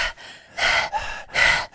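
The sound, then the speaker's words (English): Slow, deep breaths drawn down into the bottom of the chest and belly and pushed out, about three airy, rushing breath cycles with brief pauses between them, heard alone without any talking. “And then eventually you become the big Saint Bernard, where you do like really deep breathing, and it's all down in your the bottom of your chest and your belly.”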